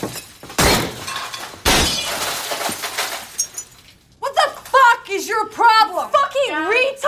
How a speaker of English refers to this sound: And then all of a sudden, he smashes the sliding glass doors again.